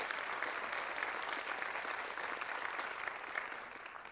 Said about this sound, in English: Well, you ought to give the Lord a good hand clap for that.